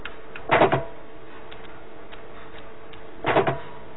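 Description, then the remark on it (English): A hungry pigeon in a uniform box, in a Skinner experiment, pecks at a colored disc for a food reward, in two separate bursts, each a quick cluster of sharp, hard taps, with a long quiet stretch between them over a faint steady hum. “And every time you hear that, that's when the pigeon's pecking.”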